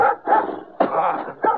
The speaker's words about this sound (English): Old hound dog came charging around the side of the house, sounding a lot meaner than he looked.